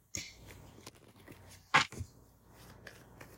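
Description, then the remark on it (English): A deck of tarot cards being shuffled, soft papery rustles and taps with one sharper, louder riffle burst midway, no voices. “Let me shuffle one more time.”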